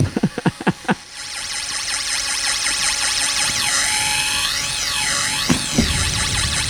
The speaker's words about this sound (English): handed me a fucking drill.